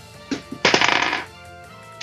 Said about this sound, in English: And then roll a 20-sided dice for me, buddy. Just roll it straight up.